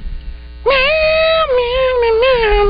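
A single long, drawn-out meow starts suddenly and wavers slowly downward in pitch for about two seconds. It is loud, over a steady low electrical hum.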